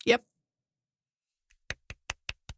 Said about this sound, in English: That was a tiny golf clap because I am quite impressed.